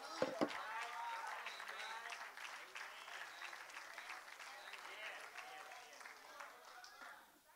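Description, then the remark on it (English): A crowd claps steadily throughout, a dense wash of many hands striking together, fading slightly toward the end. “Let's clap our hands.”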